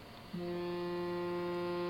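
A Windows Phone vibrating as it receives an SMS message: a steady, low droning buzz kicks in abruptly after a brief quiet moment and holds at an even level to the end, with no talking.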